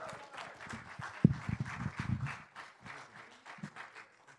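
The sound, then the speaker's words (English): An audience breaks into applause as a speaker comes up, a dense patter of many hands clapping at a moderate level, with a few sharper claps early on before it thins and fades out. “Let's give Danielle a warm round of applause as she comes up.”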